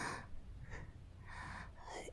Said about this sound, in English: Just for right now. Could you stop breathing in my ear?